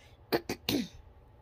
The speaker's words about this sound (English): Pardon me if I keep clearing my throat.